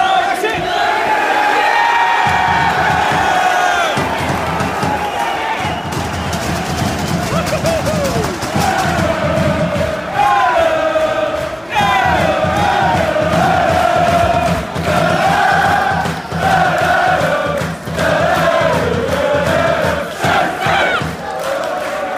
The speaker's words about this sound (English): I did quite a lot of recording for chants and things like that at the game